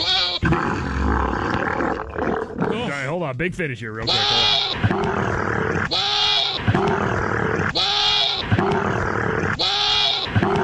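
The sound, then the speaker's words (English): Loud guttural camel mating grunts and gurgling roars overlap with repeated bleating goat mating cries that pulse at a steady rhythm, with a man speaking briefly over the mix. “Again, what you were just hearing is the sound of what a camel mating with a goat would sound like.”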